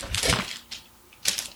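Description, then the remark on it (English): Quick scratchy strokes of a pen on paper as boxes are checked off, three short bursts of scraping marks with brief pauses between them and no talking. “Hold on now, because I done almost ripped my paper. I have to check off these boxes.”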